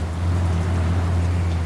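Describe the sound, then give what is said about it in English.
A video game car engine drones loudly and steadily as the player pushes the gas down, a deep continuous hum with a rushing layer of noise above it, holding for the whole moment with no voices. “I haven't really pushed the gas down like this right here.”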